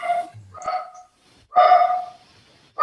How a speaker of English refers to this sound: All right, well, we get to hear my dog for a second. Everybody has an opinion, including the dogs.